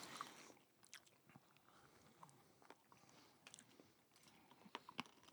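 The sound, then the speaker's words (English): Crunchy chewing of a hard 1.1-pound cookie and caramel nougat candy bar topped with hard gobstopper balls, with irregular sharp cracks and crackles repeating over several seconds, a few louder crunches standing out near the end, no talking. “Someone got a crunchy boy.”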